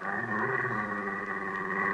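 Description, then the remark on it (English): A dog growls in a steady, continuous rumble for a couple of seconds, moderately loud, with no one speaking over it. “Ooh, now it's dogs.”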